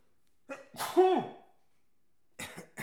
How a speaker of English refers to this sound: That sneeze wasn't part of the book.